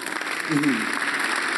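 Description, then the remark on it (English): An audience clapping together in a steady, dense wash of applause that holds evenly throughout, with a brief voice rising over it partway through. “It's a good place to clap.”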